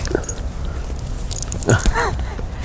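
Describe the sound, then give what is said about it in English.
A small, hyper dog named Bourdain whines and whimpers in short, high, wavering cries, with restless rustling and a light metallic jingle as it moves around. “The dog's going to be famous.”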